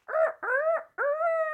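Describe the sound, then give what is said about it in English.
Robin Williams, playing Peter Pan in a film, imitates a rooster crowing, three loud strained calls in a row, the last one drawn out and rising at the end, with no other speech. “Robin Williams does a very excellent crow.”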